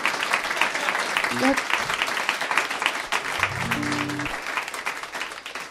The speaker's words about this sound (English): It's important to applaud quickly after the sad ones, because I'm up here by myself.